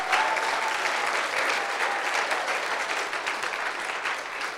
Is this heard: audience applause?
yes